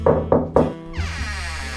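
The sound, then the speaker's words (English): A client knocks on a detective's office door: three firm, evenly spaced knocks, followed by a drawn-out creaking sound as it swings open. No voices. “Which was just as well because if Girl Friday had been there, she would have scared off the client who knocked on the door.”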